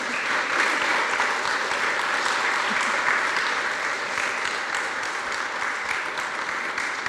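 A steady round of applause from a crowd, many hands clapping in a dense, continuous wash that holds at an even level for several seconds without voices breaking through.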